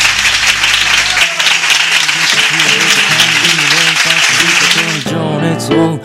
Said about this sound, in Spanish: Así que por favor, un aplauso, por favor.